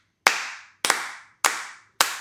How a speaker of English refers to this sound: Can we give Dr. Wu a slow clap? Go B.D. Wong.